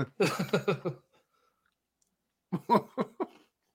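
Crunchy chewing of Oreo cookies in two short bursts of quick rhythmic bites, with a quiet pause between them and no voices.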